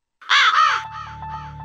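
Two loud, harsh raven caws, followed by a run of softer, quicker caws, all over a steady low hum and a faint sustained tone.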